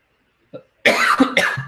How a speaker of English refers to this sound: Great time to have a coughing fit live on show, but it's not available on Android. This is when you wish you didn't do your shows live. Excuse me.